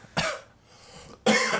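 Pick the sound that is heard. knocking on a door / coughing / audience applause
coughing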